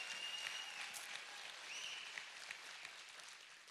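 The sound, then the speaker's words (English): A church audience breaks into sustained applause as a clap offering to the Lord, a dense, steady wash of many hands clapping at once, holding an even level throughout without voices standing out. “Come on, give the Lord a good clap offering for what he's done.”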